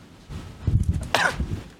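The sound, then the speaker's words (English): A single fairly loud cough, rising from a low rumble into a sharp breathy burst and then trailing off, with no speech around it. “Cough. A reference to how it took so long to set this up.”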